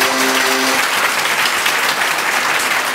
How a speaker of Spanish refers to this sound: Un aplauso, metro. Damas y caballeros, un aplauso para